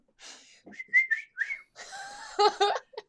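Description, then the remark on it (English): A person whistles at others, a few short, sharp notes in quick succession, fairly loud, followed by breathy, airy whistling sounds, with no talking. “Sanguine whistles at them.”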